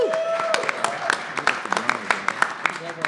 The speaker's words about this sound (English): Yes, you should clap for yourselves, always.